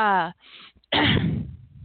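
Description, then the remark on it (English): Someone with a sore, raw throat clears their throat once: a brief voiced sound, a short pause, then a loud, rough, gravelly burst that trails off into a low rasp. “I might do that a lot too, because I noticed that I have to clear my throat a lot, and I don't know why.”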